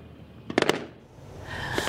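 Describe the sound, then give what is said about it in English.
Fireworks go off at sunrise in Nova Scotia, marking the start of the lobster season on Dumping Day, in a quick cluster of three or four sharp bangs, then give way to a steady, rising wash of outdoor background noise. “Fireworks at sunrise signify the start of the billion-dollar lobster season in Nova Scotia.”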